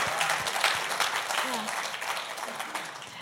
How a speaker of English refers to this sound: Yeah, you can give a hand clap for that.